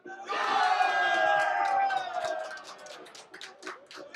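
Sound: crowd cheering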